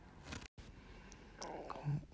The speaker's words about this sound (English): You heard that? It's my bubbles and my guts.